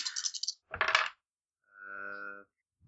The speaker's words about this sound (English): Give me a streetwise check. Okay. What's my streetwise? It's not very high. See if you know this person. I rolled too many dice.